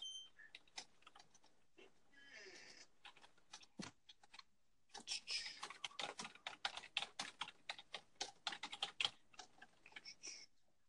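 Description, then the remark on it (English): Rapid keyboard typing of a reflection paper for school, with clicky keystrokes, starting in scattered taps and then building into a dense, steady burst of clacking; fairly quiet, with no talking. “Could I hear that? Yeah, a little typing action.”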